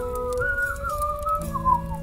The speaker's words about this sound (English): just warming up his whistling, and not as a suggestion, but he's just whistling